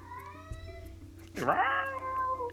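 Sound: cat meowing loudly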